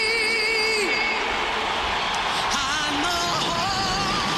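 A loud, steady roar of jet engines sweeps overhead, filling the whole clip, while a crowd yells and whoops with rising and falling cries on top.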